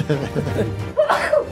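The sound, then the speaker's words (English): A single sharp sneeze bursts out near the end, following a stretch of voiced chatter and a bit of laughter-like vocalizing. “Bless you.”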